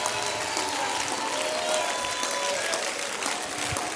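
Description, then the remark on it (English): A church audience at a Saturday night service claps their hands to the Lord steadily and densely, with scattered shouts of praise and cheers rising over the applause, sustained at a loud, even level throughout. “If you believe the Lord's going to do a great work and you're going to work with him, I want you to clap your hands to the Lord and give the Lord a shout of praise here tonight.”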